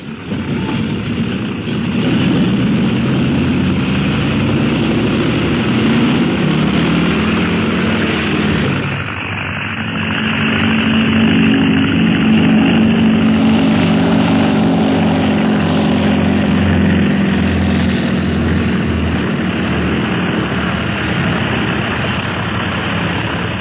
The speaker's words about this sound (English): Pressed for time, Clint leaves Ying in charge of the ground crew, and we find the plane just about to take off on the flight to Tibet.